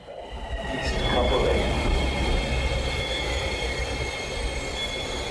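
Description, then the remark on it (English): A HART rail train rolls in, its steady low rumble joined by high, sustained wheel squeal as it slows into a station, with faint indistinct voices underneath. “Sounds of the train.”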